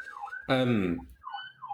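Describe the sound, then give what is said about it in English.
A siren wails steadily in the background, its tone sweeping up and down in repeated cycles, briefly covered by a short burst of someone's voice midway. “Sirens in the background of a podcast are always concerning.”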